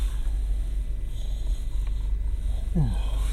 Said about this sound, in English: Excuse me, I've not been getting enough sleep. Big ol' yawn.